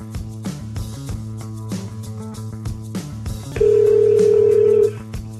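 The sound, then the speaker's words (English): A telephone rings on the line, a steady electronic tone lasting just over a second, heard over a constant low hum and faint clicks, with nobody speaking. “And what would really be great is if you picked up my phone calls every once in a while so I wouldn't have to deal with this, but I'm not going to deal with that right now.”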